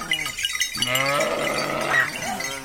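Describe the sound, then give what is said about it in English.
A flock of sheep bleats in overlapping, wavering cries, loud and continuous, as a shepherd drives it down marbled hillsides near the village of Carrera on Italy's Tuscan coast, with bells from the village church clanking faintly underneath and no voices. “Near the village of Carrera, Stephen Feld found a shepherd driving his flock down marbled hillsides to the sound of bells from the village church.”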